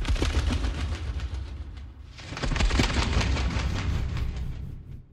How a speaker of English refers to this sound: No, it was a sheet of toilet paper. Wow. Okay, yeah. Here are the moth wings in the trailer for Clarice.